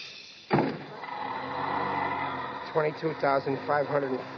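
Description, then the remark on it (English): A bus door slides shut with a sudden loud clunk, followed by a steady mechanical whir of the engine; a voice then starts talking over the hum. “Watch the door.”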